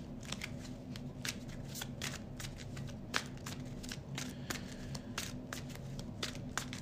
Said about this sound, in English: Let me shuffle this back up again.